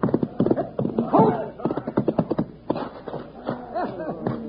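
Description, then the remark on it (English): Horse hooves clip-clop in a steady, uneven rhythm as a horse stays with a running white-faced calf, mixed with other busy sounds and what may be voices in the background. “That horse is staying with him, though.”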